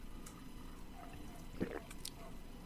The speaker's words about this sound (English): Oh man, that swallow just right into Mike. That water swallow. Yeah, what are you drinking, big man? What do you got over there? A big old water.